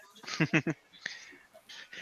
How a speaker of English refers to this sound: Oops, dog's barking. Sorry. The dogs are excited.